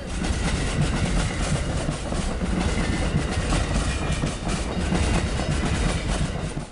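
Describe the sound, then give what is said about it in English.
A passenger train rattles steadily along the tracks at a fair pace, a dense, continuous rumble with rhythmic clickety-clack, heard from on board with no voices. “We're now rattling along at quite a fair pace.”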